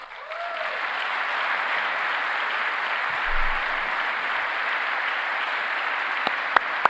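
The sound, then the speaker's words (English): Sustained applause from a large audience during a speech, a dense, steady wash of many hands clapping at an even loudness for several seconds, with a few sharper individual claps standing out near the end. “It's like the longer the applause break, the more ridiculous thing that he said.”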